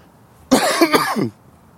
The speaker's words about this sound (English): Coughing again.